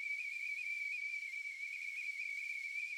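A tea kettle's whistle, simulating tinnitus, shrills at one steady high pitch with an airy hiss behind it, sounding continuously and unchanging for the whole few seconds, with no voices.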